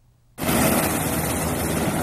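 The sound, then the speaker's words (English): After a moment of quiet, a loud, steady, dense roar of helicopter rotors and engine cuts in abruptly and holds, with no voices: two National Airborne Service Corps helicopters flying back and forth from Orchid Island, transporting disaster relief workers. “Two helicopters from the National Airborne Service Corps flew back and forth from Orchid Island transporting disaster relief workers from Taipower, CPC Corporation, Zhonghua Telecom, and the Taiwan Water Corporation.”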